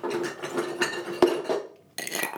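Ice cubes are put into a glass to try a tomato-juice cocktail mix. They clink and rattle against the glass in a quick, uneven run of bright knocks, one sharper clack midway, then a brief pause before a hissy rush of sound at the end.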